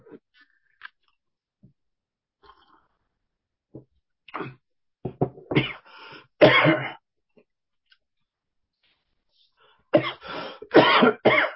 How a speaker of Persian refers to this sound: ببخشید عزیزم و چند مدت سرفه میکنه، هنوز این سرفه نرفته، این جای نگرانی نیست و ولی به هر حال برخی ویروسایی کمی مقاومتش زیاد هستش.